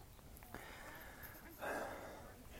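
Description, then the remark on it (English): Heavy, labored breathing of a person walking a dog up a hill in Debs Park, Highland Park, Los Angeles, with a couple of audible breaths and a stronger rasping exhale midway, at a fairly quiet level with no talking. “I'm very excited to talk to you, but I'm breathing heavy because I'm walking the dog up a hill in Debs Park, Highland Park, Los Angeles.”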